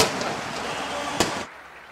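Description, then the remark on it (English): A single sharp cannon blast, fired after Le'Veon Bell's Tampa Bay Buccaneers touchdown against Carolina just before halftime, cracks out over a dense, steady roar of noise, and the roar cuts off abruptly a moment later, leaving only a faint hush. “And in honor of Gene Deckerhoff, fire them cannons.”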